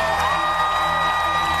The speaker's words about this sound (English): The dead player's former team, the Pittsburgh Penguins, paid tribute to him Monday night. Gentlemen, please stand and cheer one more time for number 47, Adam Johnson.